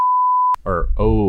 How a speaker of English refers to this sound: I got to put the beep in. Did you bleep out the last one?